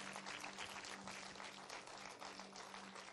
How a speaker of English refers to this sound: Come on, can we clap for that?